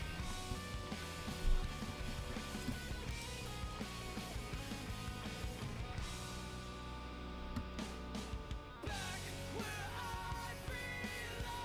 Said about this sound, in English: I did not like that yell.